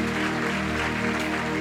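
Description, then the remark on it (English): A crowd claps steadily for people going back to their seats, in a dense, continuous wash of applause, with a faint low hum running underneath and no break in the sound. “Clap for them as they go back to their seats.”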